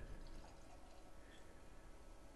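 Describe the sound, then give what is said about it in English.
Homebrewed hefeweizen beer poured into a glass, a steady, continuous stream of liquid with a bright fizzing splash, fairly quiet, with no talking. “Okay, so we're going to swirl. We're going to rouse all kinds of little funky yeasty bits.”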